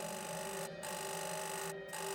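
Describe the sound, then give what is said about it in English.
A harsh hotel switchboard telephone buzzer, signalling a guest phone off its receiver, drones loudly, a steady rasping tone that briefly drops out twice before carrying on. No one speaks. “Minutes passed and the buzzer persisted.”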